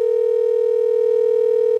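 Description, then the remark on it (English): A single steady telephone ringback tone from a call placed from a computer to comedian Joey Diaz hums loud for nearly two seconds. It is an unbroken electronic buzz that cuts off abruptly, with no voices. “No, I'm calling you from my computer so that I can record the call.”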